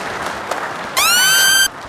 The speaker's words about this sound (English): Clap it the fuck up, nigga.